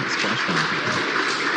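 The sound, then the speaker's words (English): Steady, dense applause in mission control as SpaceX's Crew-1 Resilience capsule splashes down in darkness, returning four astronauts from the International Space Station; a continuous crackle of many hands clapping at once with faint voices mixed in underneath. “And I don't know if you can hear the applause”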